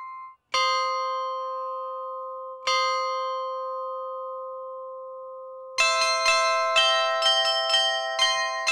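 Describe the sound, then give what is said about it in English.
Bright bell tones ring out from a clock's chiming mechanism: two single strikes that hang and decay, then a quicker run of tinkling chimes layered over the sustained ringing. There is no talking. “With many fitting chiming mechanisms to their clocks to ring out the hours.”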